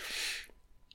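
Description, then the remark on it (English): A single loud, hissing exhale of heavy breathing in a film lasts about half a second, then fades into near silence with only a faint high blip afterward. No one speaks. “That's heavy breathing 101.”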